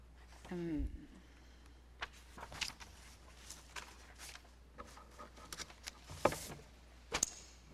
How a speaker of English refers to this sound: I also don't like all this rustling, but I can't help it.